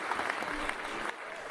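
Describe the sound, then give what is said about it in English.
An audience claps steadily, a dense wash of many hands with a few sharper, louder claps standing out, the applause holding at an even level throughout. “And then all just the mindless clapping.”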